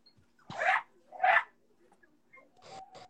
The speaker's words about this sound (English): I need to go shut up the dogs again.